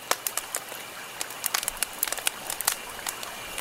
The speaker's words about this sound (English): So I want to play a few of them for you that people gave us. All right. This was, I believe it was Tanya who said, what about campfire crackling?